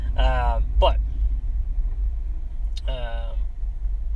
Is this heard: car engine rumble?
yes